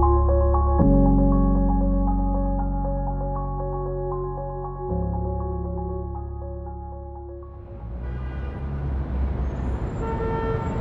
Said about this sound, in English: Every Monday at 8:27 a.m., the 2 train screeches to a halt at the Grand Concourse station, and the taxicabs blow their horns at the jaywalkers on 149th Street.